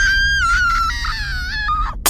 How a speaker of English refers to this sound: I chance a glance up, and I scream.